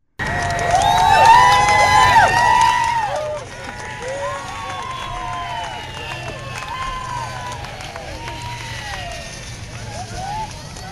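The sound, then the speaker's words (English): A crowd of Alabama fans gathered as close to the fence as they can at Tuscaloosa National Airport, as newly hired Nick Saban got off the plane, cheers and shouts loudly for about three seconds, then settles into a steady murmur of many overlapping voices with scattered whoops and calls. “This is Alabama fans... Right. ...gathering as close to the fence as they can.”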